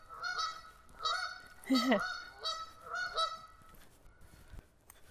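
Several geese honk in a loose, repeated series by a river along a hiking trail, their nasal calls clear, with one louder, rougher honk in the middle against a quiet outdoor background.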